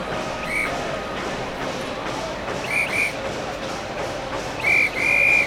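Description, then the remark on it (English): Shrill train whistles sound in short blasts, one early, a quick pair midway and a longer pair at the end, over a constant busy hum of crowd noise at a railway station in India. “It's just the noises, the sounds, the whistles, amazing.”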